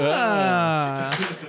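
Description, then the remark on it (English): A drawn-out voiced sound gives way to a short clatter of dice rolled for a fast-talk roll in a game, a quick burst of several hard clicks near the end. “Give me a fast talk roll if you're trying to talk your way onto the ship.”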